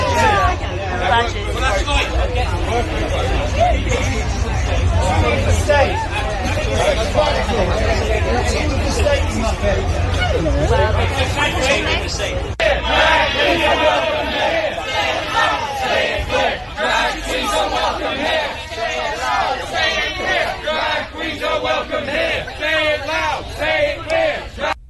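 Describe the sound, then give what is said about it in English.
A large crowd of protesters chants loudly together, many voices blending into a continuous roar, with scattered clapping through the second half. “Drag queens are welcome here, singing, so the clapping your hands and bringing your pathetic Antifa flags.”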